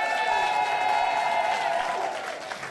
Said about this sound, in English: Can we give a massive round of applause to everyone who has been a storyteller tonight?